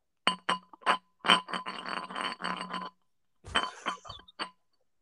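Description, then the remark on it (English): Glass bottle bottoms grind and clink against each other in a series of bright, ringing scrapes and taps, a few sharp hits followed by a longer rubbing stretch, a pause, then more clinks. “And you rub the bottom of the balls together.”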